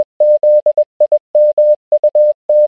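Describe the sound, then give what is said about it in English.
A steady single-pitched tone keys on and off in short and long beeps, an irregular pattern of Morse code dots and dashes played at the start of a livestream, clear with silent gaps between. “And then secondly, we got more Morse code at the start of Tuesday's stream.”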